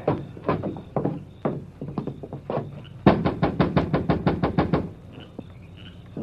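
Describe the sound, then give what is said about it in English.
Loud knocking on a door, first in a few irregular clusters, then a fast, steady burst of about a dozen sharp raps before it stops, with no voices. “If he is there, he's taking his time about coming to the door.”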